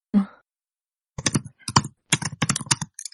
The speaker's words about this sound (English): I hear typing. Who's typing? Not me. That keyboard is mic'd. It's like some really weird Foley. Like sound effects.